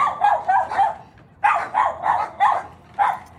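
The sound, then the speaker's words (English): A small dog named Karen barks sharply at the other dogs, about eight high-pitched yaps in two quick bursts separated by a short pause, with no one talking. “Barking at the other ones.”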